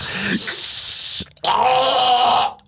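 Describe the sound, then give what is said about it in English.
A voice imitates a pressure power-wash hose spraying coffee, with two loud, sustained hissing bursts, the first about a second long and the second slightly longer with a buzzy, throaty tone under the hiss. “Your mouth, like they have one of those fucking things that opens your mouth and they're just spraying coffee inside with like a, like a pressure power wash.”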